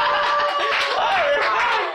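An audience applauds in a dense, steady burst of clapping that stays loud for the full two seconds, with a faint wavering whistle-like tone running through it.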